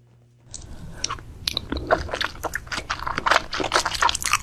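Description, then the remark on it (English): Loud, wet chewing and biting from a mukbang eating video, with crunchy, squishy bursts and audible breathing in an irregular rhythm, continuing steadily after a brief silent start, with no talking. “Yeah, I was gonna say mukbang.”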